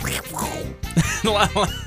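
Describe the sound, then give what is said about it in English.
A person does a Donald Duck-style duck impression, making a run of nasal, raspy quacking sounds with a voice-like tone, ending in two short, clipped quacks at a fairly steady loudness. “That was a pretty good duck impression.”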